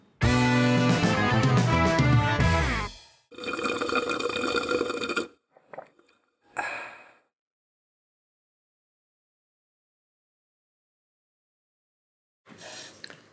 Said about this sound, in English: That's always going to throw me off. Air freshener.